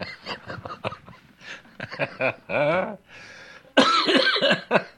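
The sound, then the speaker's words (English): A series of loud coughs in quick irregular bursts, some harsh and throaty, ending with a longer rough fit of coughing. “Uh-oh, I got a cough.”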